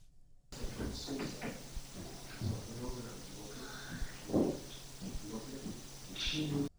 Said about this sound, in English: All right, so just before the knock, you can hear a voice say, "Hi." It's kind of creepy.